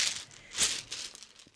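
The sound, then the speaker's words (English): Dice are rolled for an assess the situation roll in a game, rattling and clattering across a hard surface, a bright, crisp tumbling with one sharper clack partway through, then smaller ticks as they settle. No one speaks. “Oh gosh, I forgot to get dice out. There we go.”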